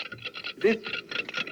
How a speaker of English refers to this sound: Tick, tick, tick. It's a most enjoyable sound. That is, of course, unless the ticking comes from a clock with rather a deadly nature.